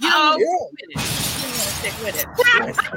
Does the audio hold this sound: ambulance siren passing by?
no